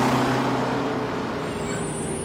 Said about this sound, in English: And the thing that I remember most about this was that there's a scene when, and I'm going to spoil it here, Regina George is hit by a bus.